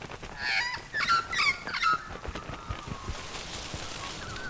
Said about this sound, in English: The magpie was squawking to warn off the other birds and protect his babies.